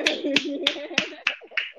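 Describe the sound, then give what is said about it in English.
Six crisp hand claps, a round of applause, land at a steady, even pace, fairly loud, with a low voice murmuring underneath between the claps. “You know, let's give yourself a round of applause. That's gonna clap real.”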